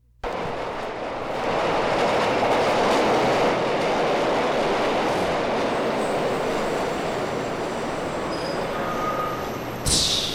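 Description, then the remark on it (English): A train rumbles along the tracks, loud and steady for about ten seconds, with rhythmic clattering of wheels over the rails and a faint metallic squeal near the end. “All right, it's a train. It's obviously a train.”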